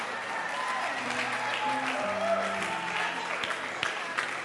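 An audience applauds steadily, a dense wash of many hands clapping for several seconds without pause, with a few sustained low tones and faint voices blended underneath.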